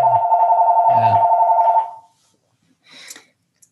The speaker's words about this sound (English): And there's my telephone. This is the problem with that phone. I don't think I can mute it.